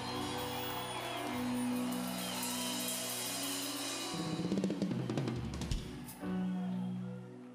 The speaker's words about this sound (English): You better clap your hands better than that.